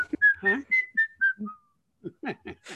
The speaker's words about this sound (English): It's music that you can whistle. It's music that just really, it makes you happy.